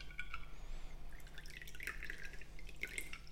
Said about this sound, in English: Of course, actually, the fun bit is pouring it into the glass and drinking it.